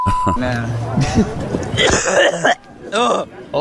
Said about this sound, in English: He just coughed up a hairball.